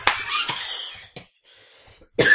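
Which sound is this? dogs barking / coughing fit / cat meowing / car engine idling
coughing fit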